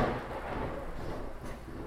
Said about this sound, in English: Let's hope that's a good thunder, not a bad thunder.